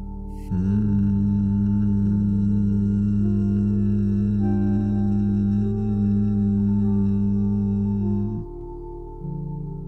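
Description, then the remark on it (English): A single low, steady hum held on one pitch for about eight seconds, fairly loud, made on an exhale after breathing in through the nose with the ears gently closed by the thumbs, then stopping abruptly, followed by a brief faint tone. “But as you exhale, begin to hum.”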